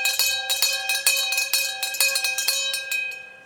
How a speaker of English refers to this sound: I'm afraid the bell has just rung. We better drink up.